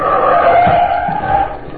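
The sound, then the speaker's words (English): Car tires screech loudly through a sharp U-turn, a sustained high squeal over a low engine rumble that holds steady for a couple of seconds. “I'll make a U-turn back out and pull the mugs down the street after me.”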